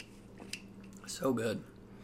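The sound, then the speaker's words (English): Soft mouth sounds of someone sipping a drink containing CBD and myrcene and swallowing, with a faint wet click early on, then a brief voiced murmur as the swallow finishes. “Yeah, I could drink those every day.”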